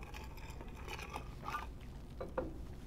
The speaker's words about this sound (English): Pardon me while I take a drink of water.